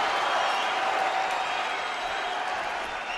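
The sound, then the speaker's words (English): A large crowd of fans cheers for a man, not stopping long enough to let him talk, roaring without letup, a dense, steady wall of voices and clapping that stays loud for the whole stretch, easing only slightly toward the end. “I don't want to stop cheering long enough to let the man talk.”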